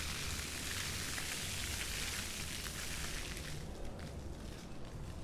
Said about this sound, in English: It's all the big fountain there. I don't know if it's picking it up. I mean, it is picking it up. But it's like a wizard or something. And a ball.